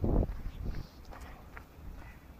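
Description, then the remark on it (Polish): Soft, muffled footsteps crunch and swish through grass at an uneven pace as someone takes a walk in nature, with a heavier thud at the start and faint rustling after. “A teraz spacer wśród przyrody. Trawa. Trawa.”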